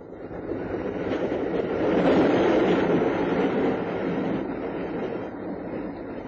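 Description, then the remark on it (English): A train rumbles steadily along the rails, a continuous roar of rolling wheels that swells slightly midway and then holds, with no voices present. “It was the canon that she filled in the details on their journey west in the train compartment.”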